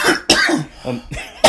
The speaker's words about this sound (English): I'm leaving in all the coughs now.